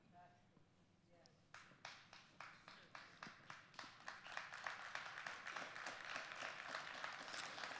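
A church audience claps hands together in agreement, starting with a few sharp, regular claps that quickly build into dense, sustained applause.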